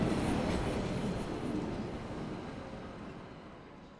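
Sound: train departing station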